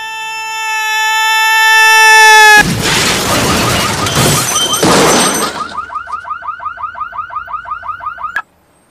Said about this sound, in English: Done? The poor guy's dead. He jumped off the building and crashed right through that car.